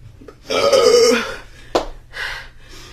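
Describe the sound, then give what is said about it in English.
A loud, drawn-out burp after chugging a Sprite Zero soda rumbles for about a second, followed by a sharp gulp or click and a couple of softer breathy exhalations. “How do people just swallow their burps?”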